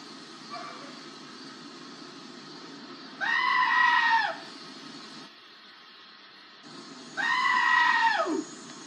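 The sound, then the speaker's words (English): Two loud, drawn-out goat screams ring out a few seconds apart, each a harsh, human-like wail over a steady low background rumble, with no talking. “I really enjoy Screaming Goats.”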